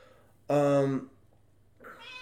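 A male cat named Rue meows loudly, a drawn-out half-second cry, then starts a second, higher-pitched meow a moment later. No one speaks.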